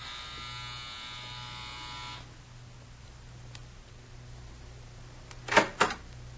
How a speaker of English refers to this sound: A few minutes later, Eddie walked right up to the front door and rang the bell.